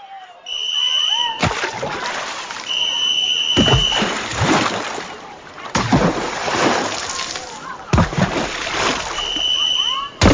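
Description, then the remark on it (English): Water splashes and sloshes in bursts as someone in clothes heaves out of a pool, several loud splatters with dripping between them, while a faint high tone hums in the background. “So finally, with a heavy heart and heavy clothes, you leave the pool. Carrying the weight of its water, some chlorine, and some bittersweet memories.”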